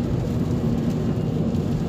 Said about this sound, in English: Now we're on our way back in the car from Gymboree. 25-minute drive in the rain.